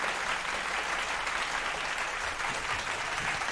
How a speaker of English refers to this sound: Let's give him the big clap because he deserves it.